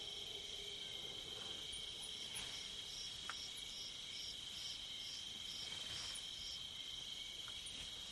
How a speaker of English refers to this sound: Krause captured this recording in Kenya in 1983 at a place called Governor's Camp. Listen closely, and you can pick out insects, frogs, elephants eating something, and the eerie wailing of a hyena.